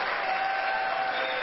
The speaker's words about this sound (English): Welcome her with a round of applause, please.